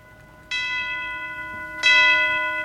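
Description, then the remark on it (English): Two loud bell strikes about a second apart, each ringing on with a bright, sustained shimmer of tones that overlap and slowly fade, opening a classic Christmas song with no voices. “But this is a very classic song.”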